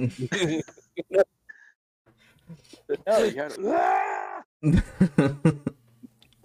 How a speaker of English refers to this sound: They even like, man, we should have been running sound on that. That was a good scream.